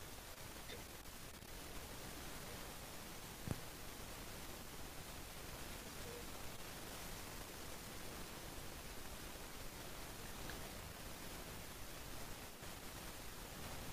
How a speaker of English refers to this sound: Ooh, that white noise is bad.